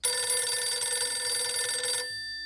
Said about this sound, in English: When the phone rang again, Sergeant Smith leaned over the girl and reached for the receiver.